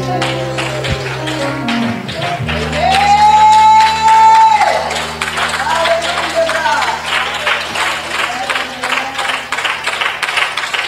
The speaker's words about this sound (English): Come on, give God a clap, pray. You love him, come on, give God a clap, praise.